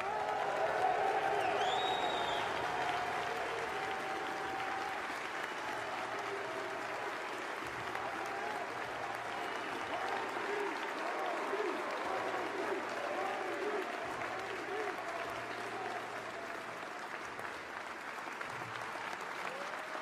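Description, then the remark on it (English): Sustained audience applause at the Hall of Fame ceremony for the basketball Class of 2020, after Kobe Bryant's induction: a dense, steady wash of clapping with scattered cheers and whistles rising over it, holding loud throughout without any speech. “Let's have one more round of applause for the Hall of Fame Class of 2020.”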